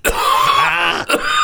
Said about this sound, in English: But he can't hide the coughing quite as well. There's something going on. Have you noticed the coughing situation?